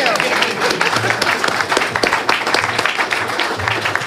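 An audience claps steadily for the guests, dense overlapping applause at a fairly loud level that holds evenly throughout with no pauses.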